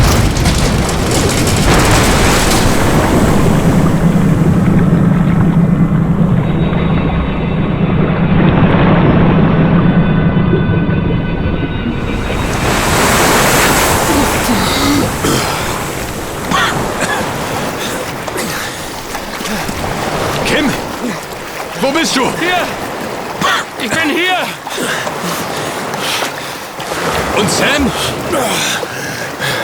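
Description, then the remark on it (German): A hatch opens on a deep, muffled underwater rumble with a low droning hum, then the sound bursts into loud splashing and churning water as people swim up to the surface from a flooded interior. “Wir öffnen die Luke und schwimmen nach oben.”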